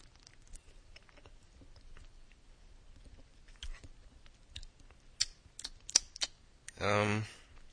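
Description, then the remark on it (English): A few small clicks and taps of handling, then near the end a can of diet, zero-calorie soda cracks open with a sharp, fizzy hiss of released carbonation. “I don't know if you just heard that, but I'm cracking it open, and I'm going to give it a sip.”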